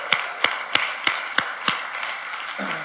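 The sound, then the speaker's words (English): A church audience applauds to thank people who pledged to cover a youth's full cost, a dense steady patter of many hands, with one clapper's louder, evenly spaced claps standing out in a regular rhythm before fading slightly at the end. “they didn't just raise their hand for the applause”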